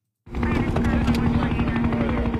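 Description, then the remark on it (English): A helicopter passes overhead in a TV soundtrack cue, its loud, steady rotor chop and engine drone starting abruptly and holding strong throughout, with a sustained mechanical hum running underneath. “Then in the previously on this week, now we have a helicopter going over.”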